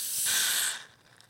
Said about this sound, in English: Watch out for the fizz on that.